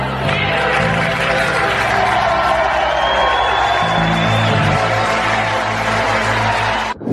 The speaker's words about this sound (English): Applause, applause, applause by dumbass MAGAs for a dictator. And that was at a campaign event hosted by Sloppy Steve Bannon